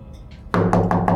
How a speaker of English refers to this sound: So if you walk up to the porch, and it's like I said, it's an older house, one story. It probably looks like it probably has six or so rooms inside. You knock on the door.